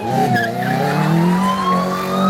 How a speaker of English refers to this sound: You put the car in gear and peel out to the street.